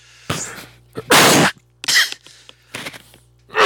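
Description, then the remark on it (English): A loud sneeze bursts out after a sharp breathy intake, followed by several shorter breathy gasps and sniffs in quick succession, with no talking. “That was a good sneeze.”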